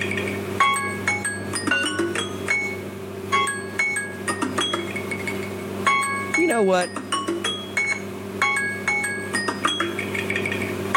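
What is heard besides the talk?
timer going off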